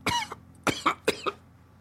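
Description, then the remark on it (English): Three harsh coughs in quick succession from a sick person, each a sharp burst with a rough, raspy tail, followed by a brief quiet pause with no talking. “Ooh, that cough is something.”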